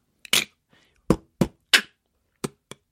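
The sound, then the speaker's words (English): Beatboxing: a voice being taught to beatbox makes a short run of punchy mouth-percussion hits, kick-like thumps and sharp hissy snares, in a loose, uneven rhythm with brief silences between them. “I just taught Ed Miliband to beatbox”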